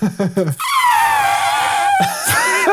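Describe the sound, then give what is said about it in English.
After a few short vocal bursts, a person lets out a long, loud, brassy trumpeting wail that holds a high pitch and slowly sags, imitating an elephant's call before a final rising squeal. “I had this, like, impulse to make an elephant noise.”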